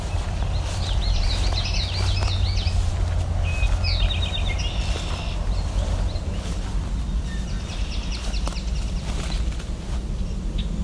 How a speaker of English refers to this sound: It's also a swamp sparrow, the more ringing sound in the background. Drink tea, part of the drink your tea, right there, eastern towhee.